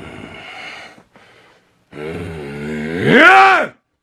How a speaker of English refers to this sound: Oh, shit. Growling like a bear. Here we go.